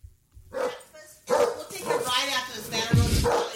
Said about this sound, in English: They have a dog, and this was in their house.